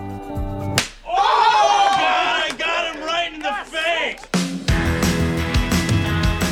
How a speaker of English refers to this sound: So, what's a whiskey slap? Simple. You take a shot of whiskey, I slap you.